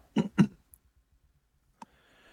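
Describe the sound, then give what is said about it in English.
A handful of computer keyboard keystrokes as someone types to search for something: two heavy clacks in quick succession, then a faint tick and a sharper click after a pause, with a quiet hiss behind and no talking. “I'm going to let my keyboard clock away and see if I can find them.”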